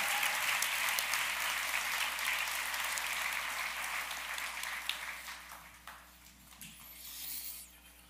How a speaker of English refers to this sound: Please give this staff a round of applause. These elders, a round of applause, please.